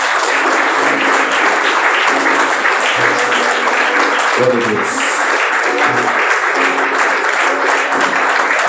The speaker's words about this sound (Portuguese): Aplausos, Senhor.